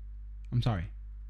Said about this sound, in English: Oh, he's so sad. A little sad meow. No, he's all right now.